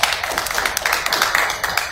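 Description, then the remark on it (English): Hand clapping in praise of God during a sermon, a steady burst of many quick, overlapping sharp claps that blend into a bright, crackling patter for about two seconds, with no talking. “Please let me clap for him.”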